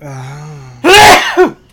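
A single sneeze: a steady, drawn-out voiced intake builds up, then bursts into a loud, harsh explosive blast with a short gasping tail at the end.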